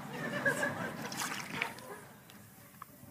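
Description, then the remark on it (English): Water splashes and trickles as it's poured, a steady gurgling stream lasting a couple of seconds before tapering off into quieter background noise. “You mind if I have some water?”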